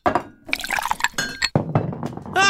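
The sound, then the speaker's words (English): Glass clinks and knocks as half a tumbler of amber liquid with light ice is poured, with bright ringing taps, ice rattling and a splash of liquid, fairly loud, with a sharp high-pitched clink near the end. “pour me a half a tumbler of the amber solution. Keep the ice light.”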